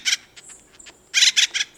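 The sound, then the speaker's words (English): Harsh, raucous calls of an acorn woodpecker from a dead oak tree: one scratchy burst, then a quick rhythmic series of three, with softer chattering notes between. Clear, with no voices. “He doesn't sound exactly like Woody Woodpecker, but this acorn woodpecker was probably the model for the cartoon character. Listen to Woody's muse calling from a dead oak tree.”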